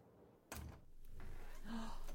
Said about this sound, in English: Guess I'll get the door.